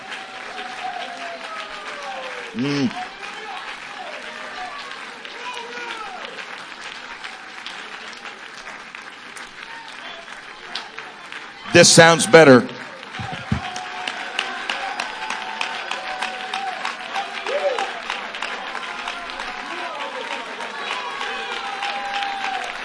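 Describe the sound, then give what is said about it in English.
An Apostolic audience claps hands in worship in a steady, dense wash of applause that runs throughout, with voices speaking and calling out over it and one louder burst partway through. “Clap your hands. Make a joyful noise.”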